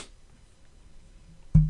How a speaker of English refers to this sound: You need a neti pot, motherfucker? Why you sniffing? Hey, I just sniffed.